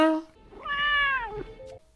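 A soft, small cat meow, a single drawn-out mew that rises and falls in pitch over about a second, heard quietly with no talking.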